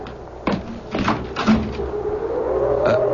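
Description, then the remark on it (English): A door is opened to someone who was at the door on a cold night, with a sharp knock-like thud, followed by creaking and rattling movement, then a steady low rushing background like wind outside. Moderately loud. “Someone's at the door. Come in. Oh, I don't like this. I'll see who it is.”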